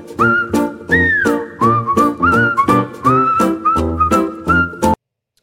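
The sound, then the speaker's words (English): A melodic whistled tune, loud, with a steady stream of short, bouncy notes rising and falling for about five seconds before stopping abruptly. No talking. “The dulcet tones of whistling that my wife hates and I love.”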